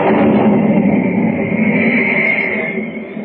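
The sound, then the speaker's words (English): A loud, crashing boom of thunder following jagged bolts of lightning over dark, turbulent sea waters rolls on as a dense, steady rumble for about three seconds before beginning to fade at the end. No voices are heard. “Jagged bolts of lightning rip across the blackened sky, followed by the crashing boom of thunder.”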